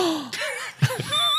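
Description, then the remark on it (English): A sudden, sharp gasp, a quick breathy intake of air, followed by a second short breath. It is moderately loud, with faint tonal sounds lingering underneath and no talking. “What other movie did you gasp at? That was an actual clip.”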